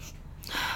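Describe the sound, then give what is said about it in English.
A woman sniffs her dog: a single sharp sniff, a quick breathy inhale through the nose that starts abruptly after a brief quiet moment and stays fairly loud to the end. “You know what that is? She's sniffing her dog.”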